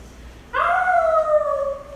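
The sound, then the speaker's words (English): A person imitates a werewolf howl as a roll-call response in a class, voicing one sustained, wavering howl that starts abruptly and slowly glides downward in pitch. It is loud, with no other talking. “Werewolf Howls for Roll Call”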